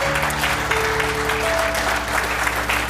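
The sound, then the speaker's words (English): An audience at a Mother's Day service applauds steadily for the ladies being honored, a dense rush of many hands clapping at once, loud and continuous throughout, with faint sustained organ-like tones humming underneath. “Come on, put your best hand clap together for them.”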